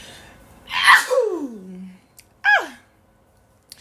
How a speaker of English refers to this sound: And so, ooh, that sneeze took a lot out of me.